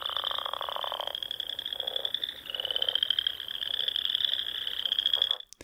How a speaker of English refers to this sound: Another selection of insects, it sounds like, although maybe a bit more tropical this time. They're frogs. Oh, frogs. But they do sound insectoid as well. Yes, I didn't know frogs made a noise, really.